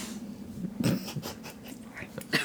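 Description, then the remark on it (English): A dog named Miles pants in quick, breathy bursts and lets out a few small whines and snuffly noises, fairly soft, with no talking over it. “right when I said Miles' name, he goes...”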